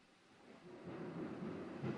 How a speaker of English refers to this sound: Can you hear the thunder in the background, Mr. Producer? Oh, yeah, the bunker's under assault. Mother Nature. You're going to hear a lot more of it because there's a massive lightning and thunderstorm rolling through the bunker or around the bunker.